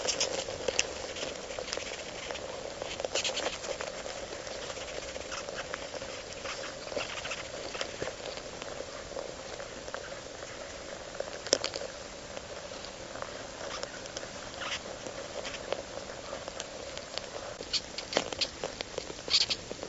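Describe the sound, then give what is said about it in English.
Hundreds of pavement ants fighting, picked up by a quarter-sized thin metal disc contact mic laid on top of the battle, their bodies rubbing against the metal: a dense, steady scratching and rustling dotted with sharp little clicks and faint squeaks over a constant low buzz, with no talking. “So I plugged the contact mic into the recorder, cranked up the gain, and very, very gently laid the microphone on top of the battlefield.”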